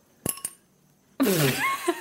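Two quick, light clinks of drinking glasses raised in a toast by a microphone are followed by a much louder, harsher clash of glasses, ringing and rattling for nearly a second.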